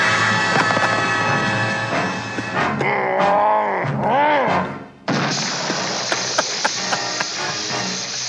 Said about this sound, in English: Yeah, that last one is when Frankenstein fires. It's a pretty good electricity sound.